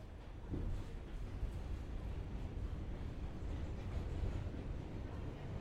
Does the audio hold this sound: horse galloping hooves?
no